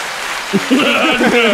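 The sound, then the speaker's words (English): A steady crackling wash of applause sound effect, like many hands clapping at once, played at the press of a button, runs through the whole clip while a voice speaks or laughs over it from about midway. “We had to turn on the clapping hands.”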